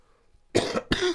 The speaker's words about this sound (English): And a little bit of a cough there